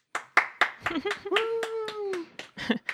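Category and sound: crowd, crowd cheering and clapping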